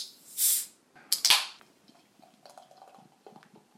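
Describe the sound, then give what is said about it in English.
A short hiss and a couple of sharp clicks, then soft fizzing and crackling as Enter Simcoe, a hazy 6% American IPA from Sirencraft Brewery in Wokingham, is poured into a glass and foams up into a foamy white head. No one speaks. “So let's get this out into my glass and see what I make of it.”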